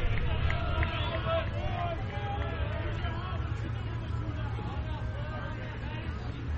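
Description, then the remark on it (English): A steady, low murmur of a large crowd at a ballpark during a Wednesday afternoon baseball game, with indistinct voices and chatter blending into a continuous hum at a fairly even level throughout. “Not a bad crowd on hand for this Wednesday afternoon affair.”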